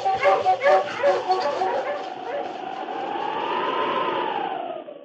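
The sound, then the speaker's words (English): A husky sled dog named King barks in a quick burst of sharp, yipping barks, then lets out a long, wavering whine that rises and falls before fading. “On, you husky.”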